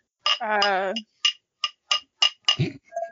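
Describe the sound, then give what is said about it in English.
Wine glasses clink together in a quick, fairly even series of about six bright, sharp taps, following a brief wavering vocal tone at the start. “That's a wine glass.”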